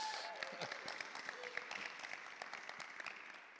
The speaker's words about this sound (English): There we are. There's one person applauding at least.